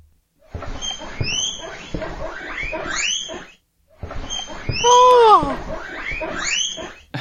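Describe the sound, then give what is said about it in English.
Guinea pig squeaks and chirps in two busy bursts separated by a short pause, rising high-pitched whistles over chattering squeals, fairly loud with no talk. “Which animal you want to listen to now? Guinea pig.”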